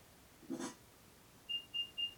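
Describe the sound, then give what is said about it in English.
A brief rustling bump, then three short, evenly spaced high-pitched electronic beeps from an item tracker on a set of keys, set off with the play-sound function of the Find My app, chiming inside a sealed, heavily padded bag, fairly faint and alone without talk. “I go into Connor's keys, play sound. Give it a second.”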